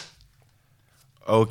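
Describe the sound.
After near silence, a brief burst of voice is followed by one sharp, loud hand clap right at the end, made to sync the audio and video of a recording.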